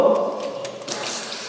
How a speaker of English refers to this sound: This sink is cold. The water coming out of the sink is cold.